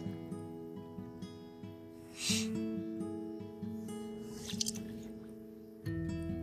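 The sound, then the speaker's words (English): A foot dips in and out of water at night, making a couple of soft, brief watery blips and squishes over a steady, droning chorus of crickets and night animals. No one speaks. “If you just listen to the beautiful sounds of the crickets and night animals and the little blips of me dipping my foot in water...”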